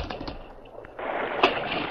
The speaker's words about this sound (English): That stallion jumped right into the creek.